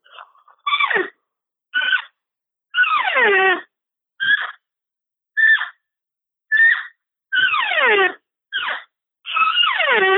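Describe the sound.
An On Fire cow call from the Signature Series line, blown on a game call: about ten nasal, reedy calls in sequence, short chirps mixed with longer mews that slide from high to low pitch, with no talking.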